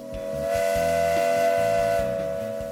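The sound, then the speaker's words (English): A loud, sustained steam lunch whistle blows continuously for a few seconds, holding a steady bright tone with a hissing edge, swelling slightly and then easing off. “Lunch Whistle Special, let's go.”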